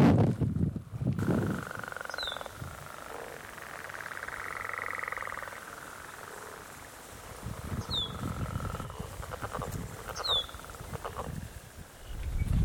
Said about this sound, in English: Oh, getting windy again.